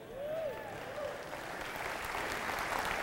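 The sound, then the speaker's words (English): Steady applause from an audience, a dense wash of many hands clapping at an even level throughout, with a brief cheer or whoop rising near the start. “I didn't mean for applause.”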